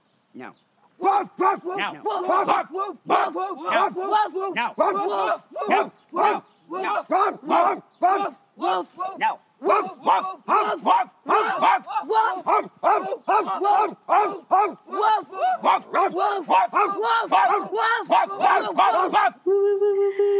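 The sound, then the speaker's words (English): People loudly imitate dogs barking, a rapid string of voiced woofs repeated continuously for about twenty seconds, ending on a held vocal tone. “Woof! Woof!”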